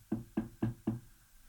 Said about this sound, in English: So you knock on the door.